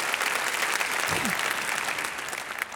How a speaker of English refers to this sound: And yeah, you can clap.